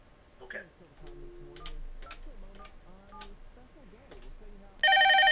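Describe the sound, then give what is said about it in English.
People talk briefly, then a loud, steady electronic telephone ring tone cuts in abruptly near the end, sounding clear as a phone line rings through while a call return connects back to a guest. “Let's see if that'll connect up to him and we can continue our conversation.”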